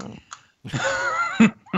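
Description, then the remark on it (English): A person imitates a dog with a single drawn-out, voiced bark sound, fairly loud, followed by brief short vocal noises. “Give me a bark.”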